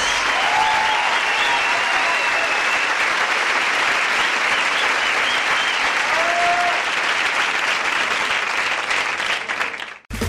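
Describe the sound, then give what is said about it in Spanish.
Loud, sustained applause from a large audience fills the space for about ten seconds, dense and steady with a few faint whistles or cheers, then cuts off abruptly at the end. “Fuertes aplausos”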